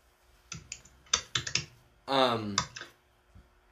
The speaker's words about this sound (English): When I ask those questions and I hear you typing, I feel like you're data and you're like looking the answer up for me right away.